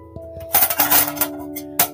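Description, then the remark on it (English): Harry Potter, hastily gulping soup, clatters his spoon loudly against a soup bowl in a rapid burst of clinks with a bright ringing tone, then pauses before one last sharp clink. “He himself felt suddenly warm around the ears and neck, and hastily gulped soup, clattering his spoon as loudly as he could against the bowl.”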